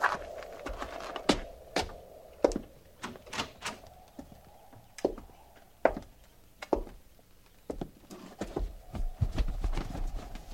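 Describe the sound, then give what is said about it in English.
Horses' hooves clip-clop in an uneven, unhurried rhythm, sharp clops scattered over a low, steady hum, as several horses shuffle and step about without talking. “hobble them horses and get up.”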